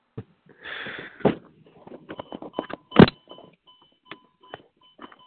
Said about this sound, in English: Ding, ding, ding. There's that damn door again.